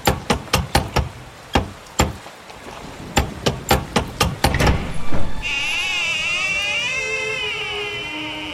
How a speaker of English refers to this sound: Okay. I grab the big gargoyle-shaped door knocker and...